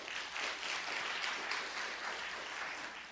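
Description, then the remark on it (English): A crowd applauds steadily, many hands clapping together in a dense, continuous patter that holds at an even level for a few seconds without any voices. “If you'll clap.”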